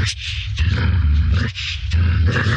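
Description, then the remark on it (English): A wolf growls loudly, a rough, rumbling snarl that holds steady for a few seconds with brief dips, and no voices alongside it. “Out jumps a little wolf that seems to want some trouble.”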